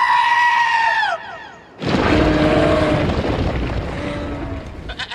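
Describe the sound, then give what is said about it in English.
A little goat lets out a loud, quavering bleat, followed after a brief pause by a longer, harsher and noisier cry that trails off over several seconds. “Oh, hey there. Sorry, little goat.”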